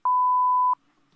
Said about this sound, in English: Please leave your name and number after the beep and I will get back to you.